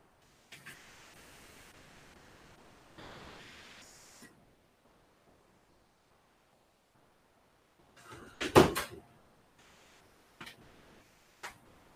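door being opened

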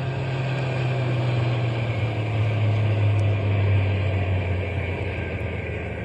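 truck engine idling

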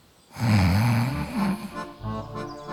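snoring

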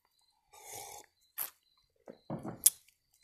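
sipping coffee

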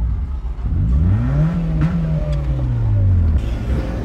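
car engine revving

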